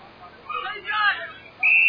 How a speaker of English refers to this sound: And there's a whistle on the play from the umpire 40 metres away. He's given Queanbeyan a free kick.